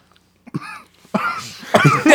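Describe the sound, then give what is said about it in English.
A strained, choked-back throaty sound rises into a few harsh, muffled coughing bursts, fairly loud, as a seated person tries to hold in a cough in public after a sip of water went down the wrong pipe. “I took a sip of water, just went down the wrong pipe”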